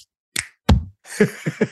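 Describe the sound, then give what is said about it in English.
Two sharp, slapping hand claps, then a voice mimics a short rhythmic clap pattern in three quick, punchy beats, imitating the little clap in the theme song of a 1998–2004 Disney show. The whole burst is brief and moderately loud. “And the guy even had like a little clap during the song.”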